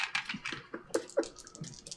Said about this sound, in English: So go ahead and roll your two dice right there, the ones in the middle.